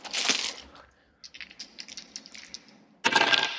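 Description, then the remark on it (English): Dice clatter and tumble across a hard surface in a quick series of sharp clicks, bracketed by louder rattling bursts at the start and end. No one speaks. “Do you want to roll some dice?”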